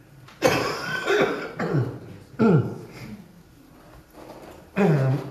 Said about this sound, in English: I don't cough like I did Wednesday night.